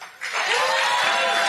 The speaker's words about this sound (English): Why are they all applauding? Wait a second. Stop the music here. Why are they all... He said two words, then he said made in America, which is three words. And they're all applauding